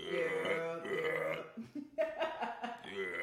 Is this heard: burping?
yes